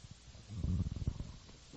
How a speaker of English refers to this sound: Now, I'm getting choked up over this, so I'll have a little sip.